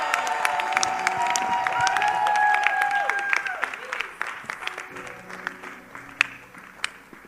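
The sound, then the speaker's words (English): A crowd applauds with loud, dense clapping and high cheers and whoops rising over it, then the clapping thins into scattered claps and fades near the end. “It's okay if that clap was for me, it's in order.”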